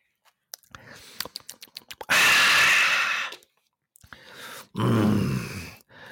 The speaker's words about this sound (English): I'm going to take a quick sip.